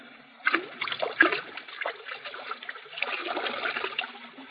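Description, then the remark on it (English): Whiskey glugs and splashes out of a half-full bottle as most of it is poured out. The steady pour runs unbroken for about four seconds after a brief pause, with no voices. “There's the whiskey, still half full. Pour most of it out, so that it will look as though we had even more to drink.”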